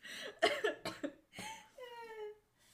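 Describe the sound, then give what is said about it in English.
A harsh burst of several quick coughs in a row from a person with allergies, followed by a short strained vocal sound as the coughing fit trails off. “Coughing because... Allergies.”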